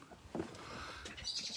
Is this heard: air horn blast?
no